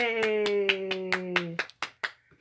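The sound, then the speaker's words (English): Roughly ten sharp hand claps in a quick, steady rhythm over a long, sustained cheering voice; the voice cuts off and a few looser, fading claps follow. “Give a clap for that.”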